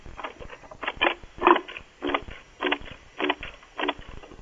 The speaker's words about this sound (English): was that you that did that fart sound? Okay. Oh, Doggy Doo did it. That's it.